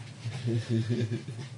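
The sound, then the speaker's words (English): A voice imitates a hungry dog's whimpering, making a few short, pitched whining sounds in quick succession. “You're a hungry dog.”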